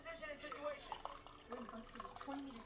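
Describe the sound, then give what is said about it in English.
Hot tea pours steadily into a cup for a few seconds, a trickling and splashing with small drips, while a voice talks faintly in the background. “Pour myself some more hot tea here.”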